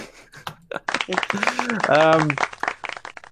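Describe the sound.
A short burst of applause, brisk irregular clapping lasting a few seconds, with a voice cheering or calling out loudly over the middle of it.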